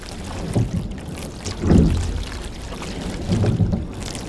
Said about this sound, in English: Yeah, just that, all the tactile and auditory information you're hearing. You're hearing those little bubbles coming off the stern of the boat.